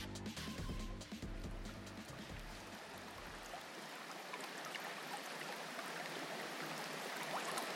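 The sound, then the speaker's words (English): Steady, dense rushing water roars without a break, like a pouring waterfall; a low rumbling hum underlies the first few seconds before the water carries on alone. “The waterfall is nature's greatest cleansing force. Feel its surge upon your body, your skin.”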